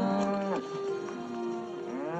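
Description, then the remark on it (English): A horse cries out loudly as a woman rider digs her spurs into it, a strained, drawn-out call lasting about two seconds, its pitch sliding down and then rising again, with no voices present. “The sound that the horse is making as she digs her spurs into the on purpose.”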